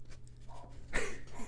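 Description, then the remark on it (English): A single short bark from a female dog as recording starts, with a steady low hum underneath; it's brief and fairly soft, with no one talking. “It's like she waits until I start recording to bark.”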